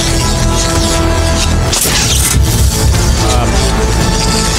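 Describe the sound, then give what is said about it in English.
Fireworks explode in a loud, dense burst over swelling music at the opening of the Tyvon collection, followed by a continuous crackling, booming barrage that fills the whole scene. “A bunch of kind of like stuff and fireworks and stuff.”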